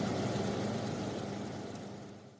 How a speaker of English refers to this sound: You're listening to Air Conditioner.